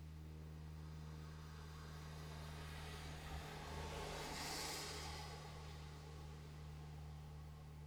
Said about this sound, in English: But you can hear the drone of a plane overhead today.